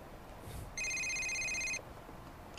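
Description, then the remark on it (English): A single electronic phone ring, a bright buzzing burst of stacked high tones lasting about a second, as a call comes in while driving down the PCH on a rainy August night, set against a steady low rumble with no talking. “That's when the call came in.”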